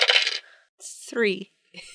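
Dice rolled for a notice check clatter and rattle across a hard surface in a few short bright bursts, with a brief voiced sound rising in pitch between them.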